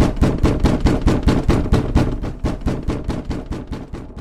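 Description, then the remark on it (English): Loud, rapid pounding on the door of hotel room 305 from the other side by the man from room 312, heavy blows landing in a steady, relentless rhythm of about four per second, continuing without pause; no voices. “I closed the door behind. Mr. 312 started banging from the other side.”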